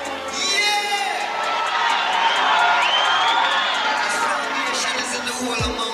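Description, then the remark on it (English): A concert crowd of tens of thousands of fans at National Heroes Park in Kingston cheers, shouts and whoops in a loud, steady roar of many overlapping voices, with faint rhythmic clapping running through it for about six seconds. “surrounded by tens of thousands of cheering fans, packed in on all sides,”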